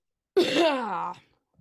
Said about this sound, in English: Anyways, all right, long pause. Fakest cough. What'd you say? It was the fakest cough. No, it was not. I'm not even kidding. It's real.